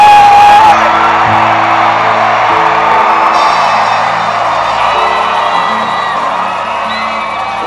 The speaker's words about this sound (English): So imagine how God is feeling when we are here for Thanksgiving and we are shouting and we are jumping. Glory!